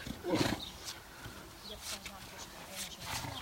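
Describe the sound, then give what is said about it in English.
Donkeys bray in a series of harsh, rasping bursts, the loudest near the start and more following in an uneven rhythm against a noisy background. “Okay, that's enough of that, you pussy donkeys.”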